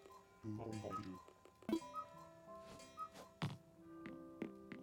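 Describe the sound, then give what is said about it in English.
Brewster's cuckoo clock in his cafe in a video game chimes midnight, playing a series of clear, ringing melodic tones punctuated by several soft wooden thunks, each note sustaining briefly before the next. “He has a cuckoo clock that's chiming right now.”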